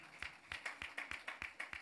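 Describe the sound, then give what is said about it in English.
Steady rhythmic clapping from an audience, about ten sharp claps in under two seconds, fairly quiet, with no voices over it. “Oh, let's give them a clap.”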